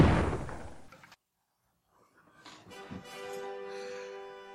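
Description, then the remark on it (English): A single loud, booming sniper rifle shot cracks out and rings off for about a second, striking a monarch giving a speech, then falls silent before a crowd's high-pitched screams swell up and continue. “And the sniper blast pierces his head, temple to temple.”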